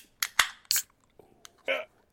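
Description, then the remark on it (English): Beer cans popping open: a few sharp metallic snaps, each followed by a brief fizzing hiss, spaced irregularly over about two seconds with no talking. “Are you ready to pop the tops”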